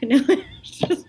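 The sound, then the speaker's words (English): An abrupt sneeze with a quick breathy build-up, then a second sharp burst, heard on its own with no talking. “Bless you.”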